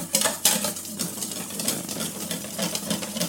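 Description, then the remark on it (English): A powder mixture being stirred in a bowl for no longer than 60 seconds, a steady gritty scraping with quick repeated strokes, a couple of sharper scrapes near the start, continuous for the whole few seconds with no talking. “So, mixing the powder, and it says to stir for no longer than 60 seconds.”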